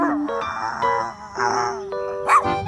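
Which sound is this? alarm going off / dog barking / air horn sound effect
dog barking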